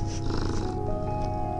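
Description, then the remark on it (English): A cat purring while kneading a blanket, a steady low rumble with a soft rhythmic pulse that runs continuously for the whole moment, with no one talking over it. “He's kneading on a blanket and he's purring. Do you hear him?”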